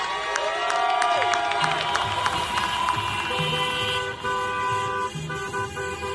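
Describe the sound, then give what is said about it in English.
Car horns in a protest procession of cars honk repeatedly and overlap in a dense, continuous stream, with long sustained blasts and shorter toots, alongside crowd noise and faint cheering outdoors. “So instead of marching hand in hand, we join a procession of cars.”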